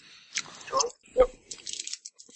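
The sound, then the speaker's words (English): Loud chewing of a Starburst candy: wet, sticky mouth clicks and smacks in irregular bursts, with a sharper crunch-like snap partway through, heard alone. “Jeez, my chewing is really loud. I blame Starburst.”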